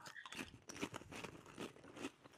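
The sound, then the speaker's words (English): Crisp crunching and chewing, as of potato chips being eaten, with irregular bursts of brittle crackle repeating through the moment and no talking. “Chip time.”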